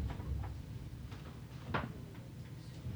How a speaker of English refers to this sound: Oh, hold on. Pause. I shut my door.